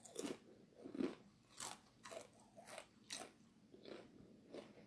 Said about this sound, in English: I know you hear me crunching all these things, sweetie. I know. That's a lot of things that I don't normally do.